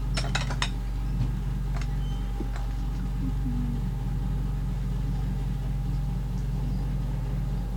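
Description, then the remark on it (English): A quick burst of dirty dishes clattering together into a bin, then a few scattered clinks, all over a steady low mechanical rumble that runs throughout. No one speaks. “that's the dirty bin. Yeah, that's where Leah wants the dirty dishes.”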